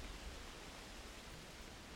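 A steady, even hiss of rain falling, soft and constant with no breaks, with no voices or other sounds over it.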